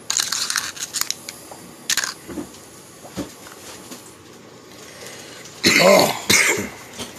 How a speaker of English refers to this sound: I think my listeners want to hear you cough.